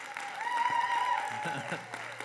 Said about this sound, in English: Hey, would you just do me a favor and just start clapping? Maybe it's a little louder.